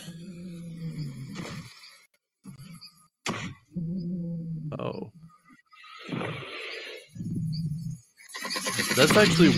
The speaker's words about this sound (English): It had no vocal cords? No, it couldn't roar. Well, that makes them even more terrifying. This is what T-Rex actually sounds like.